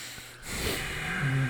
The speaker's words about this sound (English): breathing really hard. He's mad. He's fucking mad. I just hear him over there.